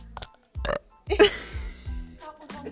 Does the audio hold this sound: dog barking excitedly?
no